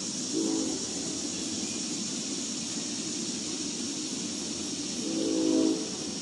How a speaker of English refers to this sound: Here's the train. Sign of production. In my town, Cincinnati.